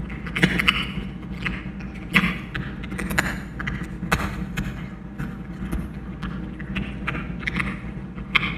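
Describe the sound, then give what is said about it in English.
Loud crunching of dry kibble as a cat eats a few steps from a 414 microphone, with irregular sharp crackly bites and low thumping jaw sounds repeating steadily, no voices present. “It turned out that the cat was eating some kibble a few steps from the mic and it was picking up.”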